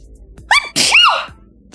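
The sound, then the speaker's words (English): A single loud sneeze with no talking: a brief sharp intake followed by a forceful, hissy burst that lasts about half a second before fading out. “Oh, that was a real one. Bless you.”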